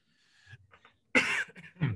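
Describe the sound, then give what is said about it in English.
A harsh coughing fit: a loud burst of coughs followed by a few more strained coughs, with faint throaty sounds just before. “while I have a coughing fit, Corey is going to hit you guys with Fun Fact Friday”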